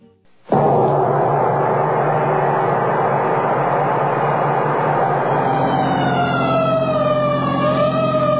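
fire engine siren wailing

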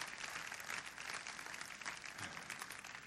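audience clapping hands

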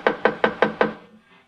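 knocking on a door

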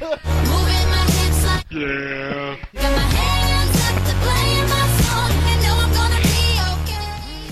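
goat screaming

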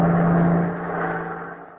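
bus driving past

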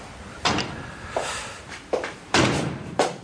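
door opening and shutting

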